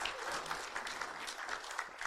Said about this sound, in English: Yeah, come on. Yep, give her a applause.